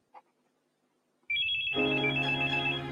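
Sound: telephone ringing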